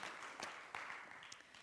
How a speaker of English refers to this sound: And can we give a clap? Can we give a thanks? It takes courage to do this.